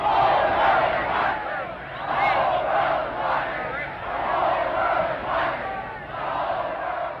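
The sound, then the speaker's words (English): A large crowd of protesters in the streets of Chicago during the 1968 Democratic Convention, being beaten by Chicago police, chants and shouts "The whole world's watching" together in rising and falling waves, a loud, dense wall of many voices with repeated rhythmic surges throughout. “You had protests in the streets of Chicago as Chicago police were beating protesters who were yelling, "The whole world's watching."”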